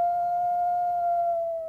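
A single long, steady wolf howl holds one clear pitch, then sags slightly and fades at the end. It is fairly loud, with no voices.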